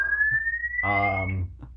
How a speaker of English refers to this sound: And the fire alarm is going off in my apartment. Oh, jeez. I hope nothing's on fire. Is that from your unit or, like, the hallway? The building.